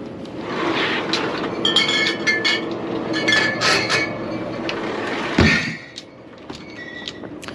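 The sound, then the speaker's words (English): A drinks cooler door in a store is slammed shut a little hard with one heavy thud, after several seconds of glass bottles clinking and rattling against a steady hum of store background noise. “Slammed that cooler door a little hard.”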